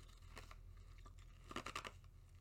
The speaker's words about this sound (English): Crunching more ice.